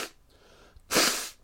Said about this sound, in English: Oh, excuse me, blow my nose. No, I didn't have no dairy. It's just fucking allergies.